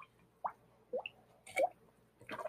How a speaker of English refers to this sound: I don't know if you could hear that, but like the water is bubbling in the cup.